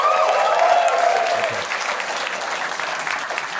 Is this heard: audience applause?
yes